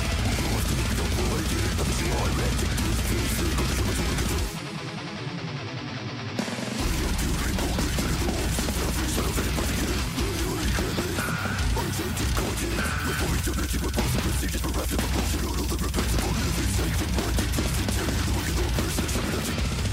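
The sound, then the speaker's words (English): Fast, relentless metal drumming with rapid-fire blast beats and dense clattering hits, loud and wall-to-wall with heavy distorted music, briefly thinning out for a couple of seconds before slamming back in. “Those drums are a prime example of why you use samples in the studio, because the blast beat, that thing.”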